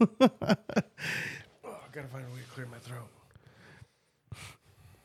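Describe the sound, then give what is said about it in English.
Someone clears their throat with a quick run of harsh bursts, then a raspy exhale and strained, voiced grunting, ending with one more short hack after a pause. “Gotta find a way to clear my throat.”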